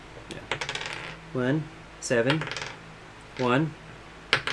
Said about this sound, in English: I was just rolling a dice.